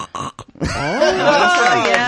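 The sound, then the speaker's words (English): A person vocally imitates a pig, starting with a few short guttural grunts and then breaking into a loud, sustained, wavering squeal that lasts over a second. “My pig impression.”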